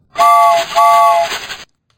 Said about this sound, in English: Get it? A train. It's really funny. Really hilarious content.